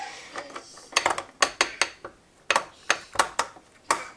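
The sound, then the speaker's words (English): Someone mashes baby food in a bowl with a utensil, making about a dozen sharp clinks and scrapes in an uneven rhythm, with no voices. “Just going to mudge this up a little bit more.”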